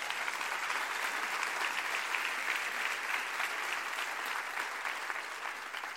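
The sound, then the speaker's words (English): A crowd applauds steadily, a dense wash of many hands clapping at a constant, fairly loud level from start to finish with no talking over it. “I think that deserves a hand clap.”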